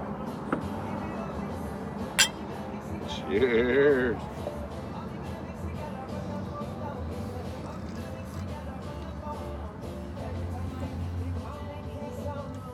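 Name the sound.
glasses clinking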